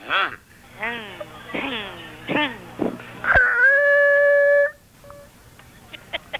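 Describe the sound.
A voice imitates a tire squealing: a few short, bending vocal swoops, then one loud, steady, high-pitched screech held for over a second before it cuts off.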